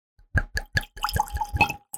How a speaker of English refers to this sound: Let's get a little pour in there. Go for it.